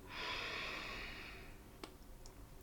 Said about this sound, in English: Continue doing this on your own, breathing in through your nose. Exhaling out of your nose.